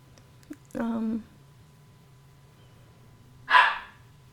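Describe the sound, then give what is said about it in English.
A dog barks twice, a short tonal bark followed a few seconds later by a sharper, breathier one, over a low steady background hum with no talking. “Oh my god, is the dog really gonna cut my time?”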